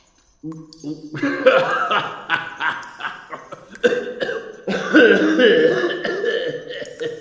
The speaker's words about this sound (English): Your cough... It is nothing.